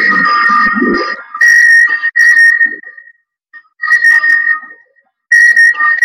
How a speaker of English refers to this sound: That is somebody calling me on Skype, and they call me. And, okay. I don't know why they're calling me, but there it is.